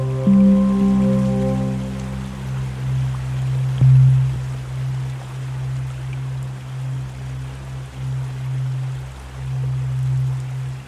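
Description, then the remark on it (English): Steady rain patters continuously on the new leaves of summer, a dense hiss of drops with no voices, while a low sustained droning hum runs underneath throughout. “The rain patters on the new leaves of summer.”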